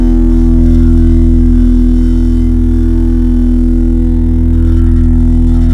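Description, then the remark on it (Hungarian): A loud, sustained low E note from a distorted, pitched-down guitar sample, droning steadily with a thick buzzing harmonic texture for several seconds, with no voices. “És ez már itt torzítva is van meg minden, és ez van lepicsel.”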